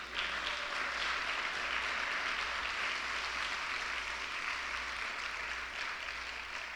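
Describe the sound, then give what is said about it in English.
A crowd applauds the graduates, many hands clapping together in a dense, continuous wash of sound that holds a constant level for several seconds without any voices. “So, last but not least, I think we just have to one more time give a round of applause to these graduates here today.”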